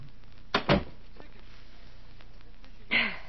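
A door swings shut with a pair of quick thuds, followed by a quiet pause and then a brief muffled rustle or voice-like sound near the end.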